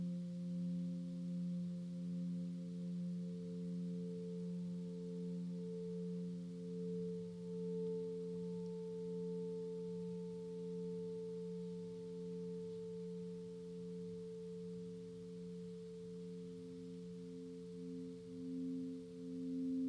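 A Tibetan singing bowl rings steadily during a meditation, its layered low, pure tones sustained throughout with a slow, wavering pulse as the overtones beat against each other. No one speaks.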